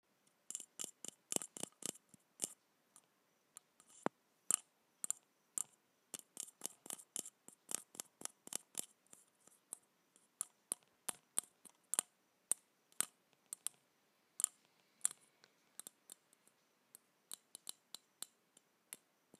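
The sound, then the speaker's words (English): Dozens of crisp taps and clicks as a light bulb is handled and tapped, coming in quick irregular bursts with short pauses and no voices. “So now, I think we should begin with the bulb.”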